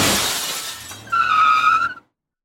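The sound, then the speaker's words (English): Anderson's police cruiser skids to a halt on the side of the road: a rough, hissing rush of tires gives way to a loud, high, steady squeal that holds for nearly a second before cutting off into silence. “I awoke as Anderson's cruiser screeched to a stop on the side of the road.”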